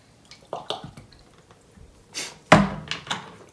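Someone drinking water, with a few soft clicks and small wet gulps, then a louder thunk like a bottle set down, followed by quieter handling noises. No one speaks.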